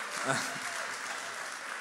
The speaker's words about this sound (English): You guys applauding at the end of a video that says tribulation in it is the most Christian thing that I have seen all week, and I am here for it.